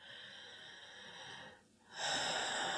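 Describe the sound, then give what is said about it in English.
A slow, deep breath drawn in and then pushed out with a soft airy hiss, a brief pause between inhale and a louder, fuller exhale. No talking. “But the best tool is your breath.”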